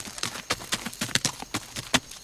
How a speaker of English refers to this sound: Then, before Valentina could even say thank you, the horse whirled around and galloped away.